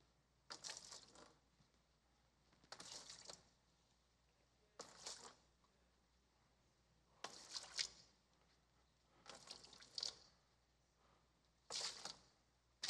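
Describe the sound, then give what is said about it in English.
Liquid splashes into a bucket in a series of short pours during a church demonstration, about seven brief bursts spaced a second or two apart, fairly faint with quiet gaps between them and no talking. “So if you guys can go in and pour it in.”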